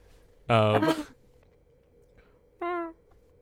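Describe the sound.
A person mimics a cat, giving a loud, drawn-out meow followed a moment later by a shorter, softer one, against quiet background hum.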